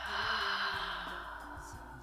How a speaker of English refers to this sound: Again, inhale. And exhale. Good. Another one. Inhale. And exhale.